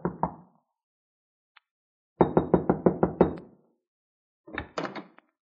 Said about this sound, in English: I tried the door, but it was locked, so there was nothing for me to do except knock.